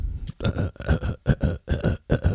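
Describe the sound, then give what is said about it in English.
A run of loud, guttural throat clearing: about six rough, rasping vocal bursts in quick succession separated by brief pauses, with no talking. “So, well, first off, I got to say sorry for having to listen to me clear my throat. Let me clear my throat.”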